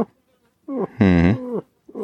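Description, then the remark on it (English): A bull elk gives a slow, low love chuckle: a few deep, throaty grunting notes, the middle one loudest and raspy, clear with no voices. “And they would do that chuckle sound, that real slow love chuckle, to try to call me.”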